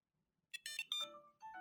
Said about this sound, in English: Then your phone rings. Oh. So you're like, where's my phone?